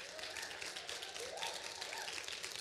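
A crowd claps steadily in dense, crackling applause that stays fairly even throughout, with a faint whistle-like tone or cheer rising briefly in the middle.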